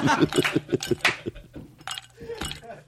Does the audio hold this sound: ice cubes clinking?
yes